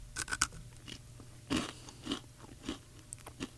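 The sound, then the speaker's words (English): Crisp crunching of fresh cheese puff snacks (cheesies) being bitten and chewed in a studio, with several sharp bursts spaced irregularly over a few seconds and no talking. “Take some cheesies here. Definitely fresh. I like the crunch.”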